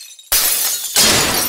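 Two loud bursts of harsh, jangling rattle, like shards of ice or broken glass being shaken hard, from ice partly filling empty water jugs carried in an overloaded pack and shaken with each step while hiking out of camp, each burst lasting over half a second, with no voices.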